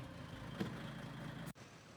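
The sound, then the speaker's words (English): A dump truck carrying a statue in the back drives off down the road, its engine rumbling steadily, a deep low drone with a gritty roar. It cuts off abruptly near the end, leaving a fainter engine hum. “Riding off down the road with the statue in the back of the dump truck.”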